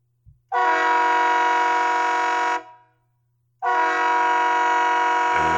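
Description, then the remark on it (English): Two long, loud blasts from a Shocker S6 train horn, each lasting about two seconds with a rich chord-like tone, separated by a brief silence, heard clearly with no talking. “That's actually the train.”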